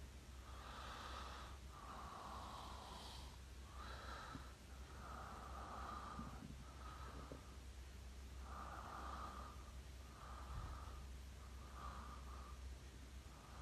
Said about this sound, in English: Stop it. I'm just trying to breathe, people. Why do you keep talking about how hard I'm breathing? Leave me alone.